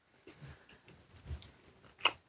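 Someone chews food with soft, irregular crunching and mouth noises, ending in one sharper, louder crunch. No one speaks.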